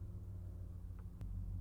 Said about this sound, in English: It's a big ass truck.